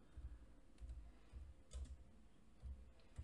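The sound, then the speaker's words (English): Soft, irregular clicks and taps of typing on a computer keyboard, quiet, in short bursts with brief pauses between them and no voices. “You know, I can see what you're typing.”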